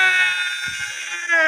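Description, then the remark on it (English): A person lets out one loud, shrill celebratory victory screech after winning a game, held steadily for about a second and a half with a slight lift at the end, with no talking. “Woo! Victory. Victory. Victory screech!”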